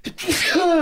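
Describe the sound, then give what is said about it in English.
A single sharp sneeze bursts out into the mic, a quick breathy intake followed by a loud explosive release that trails off into a brief voiced tail. “Okay, cool. Gesundheit.”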